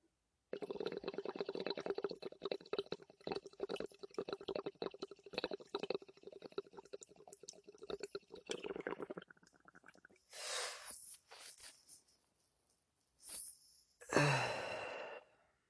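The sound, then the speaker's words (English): Steady bubbling through the water of a dab rig for about nine seconds as someone takes a dab hit, followed by a few breathy exhales and a final forceful blow of air, with no talking. “Wasn't satisfied with that dab hit, guys.”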